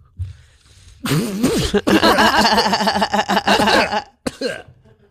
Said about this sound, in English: Why does the vape make me cough more than a cigarette does? It hits harder than a cigarette. It hits really strong. It's a really strong vape.